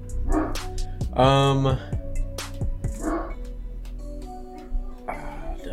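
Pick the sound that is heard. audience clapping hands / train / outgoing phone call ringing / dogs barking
dogs barking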